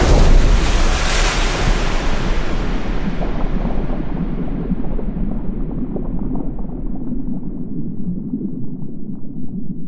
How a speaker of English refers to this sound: I tumbled through the open door of the Mercedes and back to Aona, where I plummeted through the hole in the rock and smashed full force into the sea.